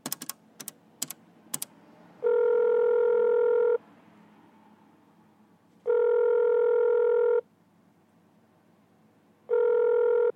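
Four quick clicks of a phone keypad as a man dials a number with the phone on speaker, then a loud, steady electronic ringing tone that repeats three times with long pauses, with no talking.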